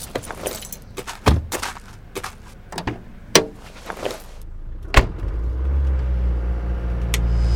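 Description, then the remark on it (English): Keys jingle and a few doors clunk shut, then a car engine turns over and settles into a steady, growing low rumble as the vehicle pulls away. “Get in the car.”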